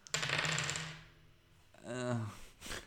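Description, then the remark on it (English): A short clatter of dice rolled across a hard tabletop to decide the number of lines of a song, rattling briefly before settling; a voice follows after a pause. “These dice have a tendency to roll very high.”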